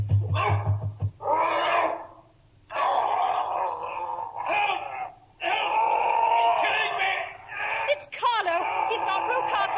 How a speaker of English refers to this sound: Mr. Rucastle, let loose the dog! Get him!